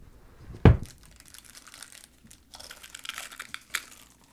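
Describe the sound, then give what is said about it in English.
A bag of Pocky chips crinkles and rustles, starting with one sharp crackling burst, then a stretch of softer scattered crinkles and a few louder rustling bursts toward the end. No one speaks. “These Pocky chips are brought to you by the Groom Room.”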